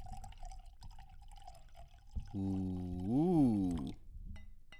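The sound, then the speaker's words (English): Wine, a 2017 Federalist, is poured into a glass: a soft trickle first, then a loud, ringing glug about a second and a half long whose pitch rises and then falls, with no talking. “And today I have my first time trying this wine.”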